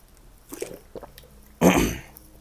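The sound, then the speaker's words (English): Soft, brief sipping and swallowing of water come first, followed by one loud, harsh throat clearing. No one speaks. “Just took a sip of water. Hopefully, we can clear this throat up for you guys.”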